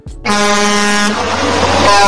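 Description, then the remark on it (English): A loud, sustained truck air horn blast starts abruptly and holds steady for about two seconds, its rich harmonic blare dominating, with no talking over it. “But hold on, before you get started, make a little sound for our boys that driving our truck drivers, man.”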